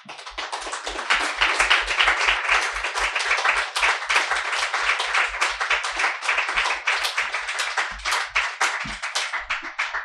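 A crowd applauds steadily for about ten seconds, many hands clapping in a dense, continuous patter with no voices breaking through.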